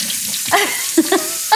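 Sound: tap water running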